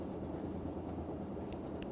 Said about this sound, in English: Very sorry about that. I will delete this if it's too bad. But I will just let this ambient train noise record for a minute so I can overdub it later.